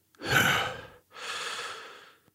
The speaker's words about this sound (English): And with another booming thud, he drives it into the side of a tree, where it remains. And he places his hand against it, supporting his weight, panting.